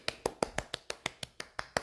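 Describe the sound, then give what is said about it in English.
One person clapping by hand as a round of applause, quickly and steadily, about eleven sharp, crisp claps in an even rhythm over roughly two seconds, with no voices. “That's my round of applause button, but I actually did the clapping myself.”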